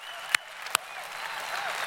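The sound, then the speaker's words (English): An audience applauds steadily for people who graduated from high school or college that year during the COVID quarantine, a wash of many hands clapping with a couple of sharp, loud claps standing out near the start, and faint cheering mixed in. “If you graduated this year, would you stand? We just want to cheer for you.”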